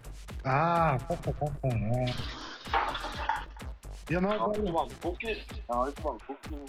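A person vocally imitates a coffee maker brewing, with wavering gurgling hums, bubbly pops and a breathy hiss in the middle, loud.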